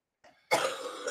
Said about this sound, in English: I'm just mortified by this coughing fit going on behind me.